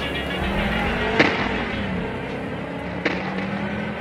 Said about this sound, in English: FDMU watches as the stolen car speeds away, disappearing behind a cloud of dust.